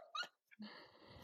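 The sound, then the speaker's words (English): A dog named Prancer growls, a brief sharp vocal burst followed by a steady, low rumbling growl that carries on to the end, with no one talking. “So now Prancer's growling.”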